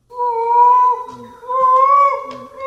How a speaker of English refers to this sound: Okay. Say what it's called before it. Okay. So this is Monkey Cry.